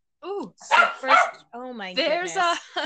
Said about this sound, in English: Hey, everybody, there's a dog in the house in case you didn't know.